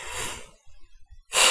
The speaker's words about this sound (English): I keep yawning.